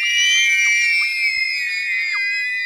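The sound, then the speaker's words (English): A young girl screams excitedly in a high, piercing voice. The shriek is loud, held almost without a break for a few seconds, with slight wavers in pitch. “my inner monologue was like a 5-year-old girl jumping up and down and screaming.”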